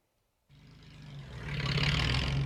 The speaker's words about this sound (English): Pickup trucks loaded with freshly cut firewood gunned up the steep road in front of Bilbano Olvera's home in the small town tucked into the lush mountains in Mexico's Gulf state of Veracruz.